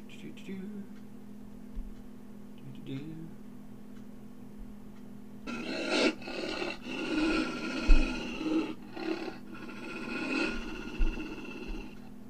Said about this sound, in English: You hear the growling of wolves.